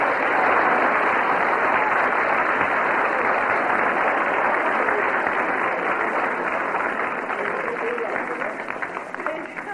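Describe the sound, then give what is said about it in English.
A large church audience claps hands in sustained, dense applause for visitors who came back from Jamaica, loud, carrying steadily for about ten seconds before easing slightly at the end, with indistinct voices mixed into the clapping. “Give them a clap, yes.”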